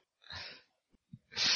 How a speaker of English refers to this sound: Not bad for a voice acting use of coughing.